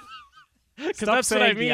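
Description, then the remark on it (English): A raspy, nasal duck-like voice from an insurance company's commercial squawks loudly, quacking out the company's brand name in a harsh honk after a couple of faint, softer calls and a short pause. “If you Google Affleck duck, that's the Affleck duck.”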